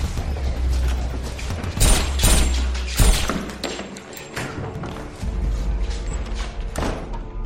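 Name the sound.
gunshots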